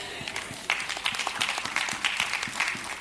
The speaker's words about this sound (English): Thank you for the 4.5 hand claps. Very encouraging, but that's why I'm going to preach it anyway.